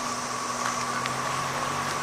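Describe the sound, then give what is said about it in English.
A constant, dense drone of 13-year cicadas fills the whole clip, a steady whining buzz with a high hiss above it and a low hum underneath, unbroken and even in loudness, with no voices. “Those are 13-year cicadas. That's a good noise.”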